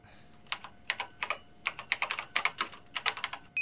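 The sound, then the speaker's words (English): Rapid, uneven keystrokes clatter on a computer keyboard for a few seconds as a password is typed, clear, with no voices, ending in a short electronic beep. “Fire up his computer. Maybe we'll find something there. Do you know his password? No. Try Hitchcock.”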